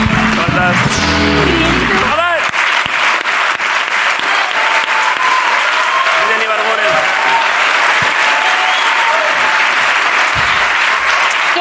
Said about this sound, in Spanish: La conocéis todos, es una auténtica estrella. Está aquí, pido un aplauso para Miren Ibarguren en la resistencia.